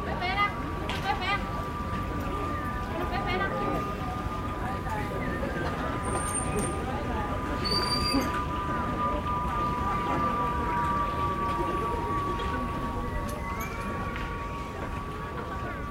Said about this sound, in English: These are small pipes that are attached to the pigeon's tail feathers and that make a haunting whistling sound as they fly through the sky. We're listening to a recording made in Beijing by the sound artist Peter Cusack.